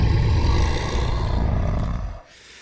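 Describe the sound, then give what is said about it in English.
A loud, rough grizzly bear growl rumbles for about two seconds, deep and gravelly with a heavy low end, then cuts off abruptly, leaving quiet. “So, man, Big Grizzly Growl going out to Coach Primetime and the Colorado Buffs.”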